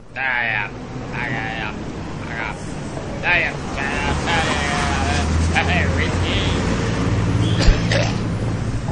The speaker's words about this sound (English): And so, to represent her dulcet tones at the start of this podcast, we have the sounds of a tramp shouting at passing cars.